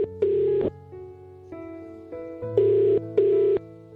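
A telephone ringing tone heard from the caller's end as Hot 102.7 radio presenters phone a listener: one ring, a pause, then a quick double ring, fairly loud and clear over a soft sustained musical background.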